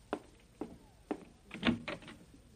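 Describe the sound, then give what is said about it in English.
A few evenly spaced thuds, like footsteps, lead into a louder cluster of clicks and rattles as someone opens a door to answer it. No one speaks. “Want me to answer the door? No, you go make the sandwich. I'll answer.”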